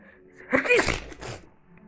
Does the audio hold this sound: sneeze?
yes